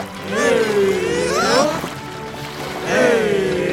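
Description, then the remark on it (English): British soldiers rowing little boats across water trying to escape Yorktown: two drawn-out, creaking oar strokes sweep up and down over a steady wash of lapping water, fairly loud, with no talking. “The British tried to escape in little boats.”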